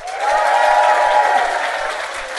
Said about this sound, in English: Give me a round of applause if you've ever heard our podcast Do Go On before.